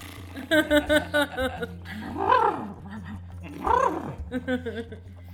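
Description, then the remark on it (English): A person's voice imitates a horse up close: a quick, stuttering nicker like a chuckle, then two drawn-out whinnying calls that rise and fall, ending in a few short snorting sounds. “You hear the other horse sort of chuckle.”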